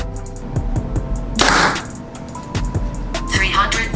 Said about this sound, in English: All right, so now we're gonna go ahead and speed test the new Behr Kuma 30. So first arrow we're gonna shoot is the 350 grain lightweight arrow.